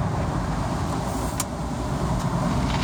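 Car wash bristles scrub against the side of the car, heard from inside the car as a loud, continuous rumbling whoosh with a couple of brief sharper swishes, no voices. Soap suds cover the windshield.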